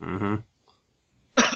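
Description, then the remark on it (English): Two fairly loud coughs about a second apart: the first a longer, throaty, voiced hack, the second a sharper, breathier burst. No one speaks. “No cough.”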